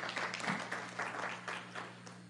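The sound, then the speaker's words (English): A church audience breaks into applause for the media team at a morning service, a dense wash of many hands clapping at once, fairly steady and moderately loud over a low constant hum, lasting a couple of seconds. “Let's give our media team a round of applause this morning.”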